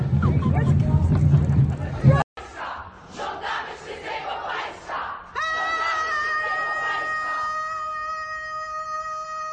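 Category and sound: crowd, women screaming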